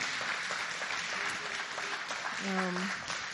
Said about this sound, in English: So let's give him a really, really big round of applause.